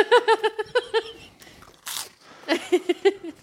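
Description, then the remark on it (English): Crunchy chewing of something dry, with a sharp crackly bite partway through, surrounded by short rhythmic voiced hums or laughs from another person. A man chews the dry food two pieces at a time against a timer. “I was like, oh, I'm going to chew these a little bit more.”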